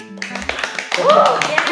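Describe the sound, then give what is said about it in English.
Several pairs of hands clap in a quick, steady patter throughout, and a high vocal whoop rises over the applause about halfway through. “Let's have a clap!”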